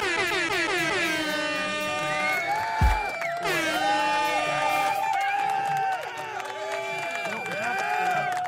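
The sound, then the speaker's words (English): Loud, blaring air horn blasts, one long sustained honk with wavering pitch, a brief thump, then another extended blast that warbles and dips before cutting off. “No, this is air horn.”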